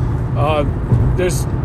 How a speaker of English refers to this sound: I know there's gotta be a faster way to get to where I'm trying to go, but I'm driving right now, and I'm not gonna look at a map while I'm driving, so I'm probably end up just going the slow way.